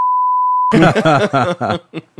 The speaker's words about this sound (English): So can you just put beeps over that? Yeah, like, yeah, I'll just beep it out. In case you didn't get that.